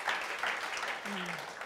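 A crowd claps steadily in a dense, continuous wash of applause, with a brief low vocal tone rising out of it near the end.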